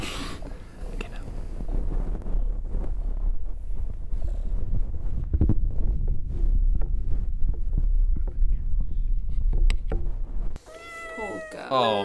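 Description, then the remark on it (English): Muffled, steady low rumbling and soft throbbing from the stomach of a cat named Jubbly held against the microphone, continuing for about ten seconds before giving way to a brief higher, tonal sound. “I'll put Jubbly's stomach next to the mic.”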